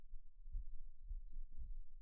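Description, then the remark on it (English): A cricket chirping sound effect, played from Discord's soundboard, chirps in a steady rhythm, five or six evenly spaced high, thin trills over a low background rumble, fairly faint with no talking. “I just made cricket sounds.”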